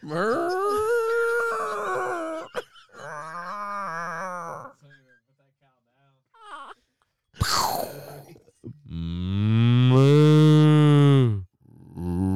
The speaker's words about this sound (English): A fucking moo cow. What the hell was that?